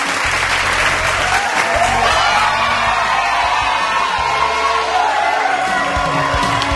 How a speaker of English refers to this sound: And you guys have been an awesome crowd, an awesome audience, and I think you deserve a round of applause and some cheers.